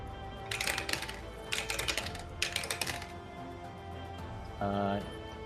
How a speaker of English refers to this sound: I have to roll lots of dice. Oh, good. All the dice.